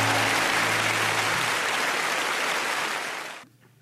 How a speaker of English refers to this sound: Give them an applause. They'll shut up, all right?